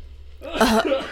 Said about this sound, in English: And I'm about to cough.